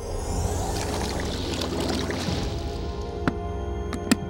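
The ferryman's boat moves steadily across the dark water of the river Styx toward Pluto's kingdom, with a continuous low wash and lapping, then a few sharp oar splashes and knocks near the end. Moderately loud, no voices.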